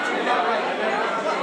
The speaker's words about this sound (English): Excuse me. Pardon me. Hello. Excuse us. We're going through a crowd right now. This is amazing. Excuse me. Pardon me. Pardon me. Pardon me.